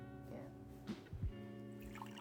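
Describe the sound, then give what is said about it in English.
A voice mimics liquid being poured into a glass as a refill, a short run of burbling, gulping mouth sounds over a steady hum, moderately loud. “I'll make a leak sound effect real quick. Hang on, I got you. Like that's called a refill.”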